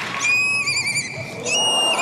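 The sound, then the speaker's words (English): An 11-year-old girl on America's Got Talent imitates a horse's whinny: a shrill, quavering neigh that wavers and breaks, then rises again in a second burst, with no talking. “Horse.”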